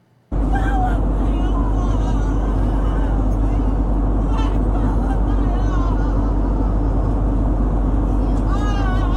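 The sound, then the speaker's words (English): A loud, steady low roar of airplane cabin engine noise fills the whole recording after an abrupt start, with voices faintly audible underneath the constant drone. “By the way, people that make fake plane videos, that's the thing you're missing is the actual noise of a plane flying.”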